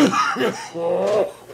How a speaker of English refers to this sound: The coughing is actually a good sign because it means the anesthesia and muscle relaxant are wearing off and I'm beginning to breathe on my own again.